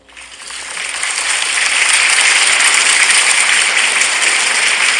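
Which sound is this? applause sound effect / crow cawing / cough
applause sound effect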